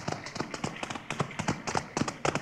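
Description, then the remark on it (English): Several ridden horses' hooves clip-clop in a steady, overlapping rhythm as the riders approach, moderately loud and drawing closer, with no voices over them. “Quiet. Here they come.”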